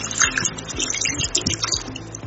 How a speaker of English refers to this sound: So I'm pouring in my formalin now.